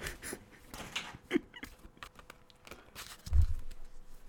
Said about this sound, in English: All right, and I'm fucking shuffling. My favorite part of shuffling is the shuffling sound effect that comes equipped.